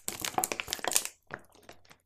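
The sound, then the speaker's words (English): A quick gulp of water, heard as about a second of dense, crackly crinkling and clicking, then a short pause and a few softer, scattered clicks. No one speaks. “Sorry, it's me taking a little gulp of water.”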